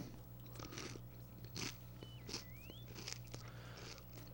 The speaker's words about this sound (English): Dude, quit chewing in the mic, dude. The listeners are going, dude, you're an idiot.